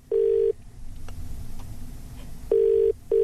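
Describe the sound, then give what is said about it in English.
Ringback tone of an outgoing phone call to a dad: a steady, low-pitched electronic buzz that sounds once, pauses for about two seconds, then comes back as a double burst, over a faint background hum. “And we'll just see how your dad reacts when you give him a call.”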